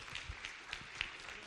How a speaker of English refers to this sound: Give the Lord a clap and a shout like you got this.